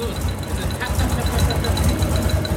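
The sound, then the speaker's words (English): An idling engine rumbles steadily while a fast, regular metallic ticking repeats over it, light and high-pitched, running evenly through the whole stretch. “Now you hear that ticking.”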